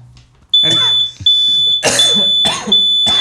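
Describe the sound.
A shrill, high-pitched fire-alarm-style tone sounds in long, nearly continuous beeps with brief gaps, loud, while voices talk over it; it is made by people pressing buttons, not a real fire alarm.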